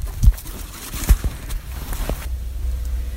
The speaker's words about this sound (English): We're hearing something rustling around in the saw palmettos here. We're thinking maybe it's an armadillo. He doesn't worry about the sawtooth on the stalks of the plants because he's covered with armor plates.